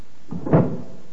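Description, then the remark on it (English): A desk drawer in an office slides and bumps shut in one quick wooden movement, a short scrape rising into a dull thud, moderately loud with no voices around it. “Let's have a look in the desk drawers.”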